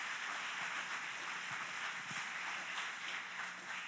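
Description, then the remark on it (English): An audience applauding together, giving God a round of applause during a bilingual English-Spanish church service, a steady dense wash of many hands clapping at once that fills the whole four seconds at an even, moderate level, with no voices on top. “A round of applause.”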